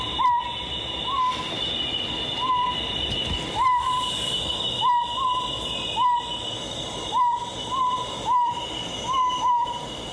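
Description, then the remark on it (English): A Principe scops owl gives short, clear whistled notes about once a second in a steady series, over a constant high-pitched insect drone, with no one speaking. “And here, the very first and only recording of the Principe Scops Owl.”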